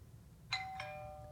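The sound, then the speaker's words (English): A two-tone doorbell chime rings out, a higher ding followed by a lower dong, each note sustaining and slowly fading over a faint low hum with no talking. “If someone comes to the door, time's up, gentlemen.”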